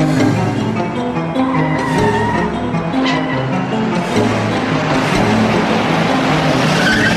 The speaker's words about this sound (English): There's the car I saw earlier. When I went after them, they took off. Let's get them.